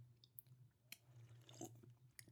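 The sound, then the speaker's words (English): A quiet sip of beer taken before rating it: soft wet slurping and mouth clicks, with a faint swallow, over a low steady background hum and no talking. “All right, let me get one more sip and I'll rate it.”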